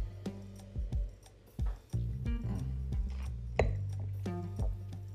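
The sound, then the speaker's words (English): A wine glass clinks and taps several times at irregular intervals, fairly sharp, over a low steady humming tone, with no one speaking. “Now, what the diet is, I have a glass of wine because I'm a little stressed talking about it.”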